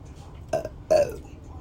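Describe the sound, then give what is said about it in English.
Two short, throaty burps, the second louder and longer than the first, with a brief pause between them and no talking. “No, I had to burp.”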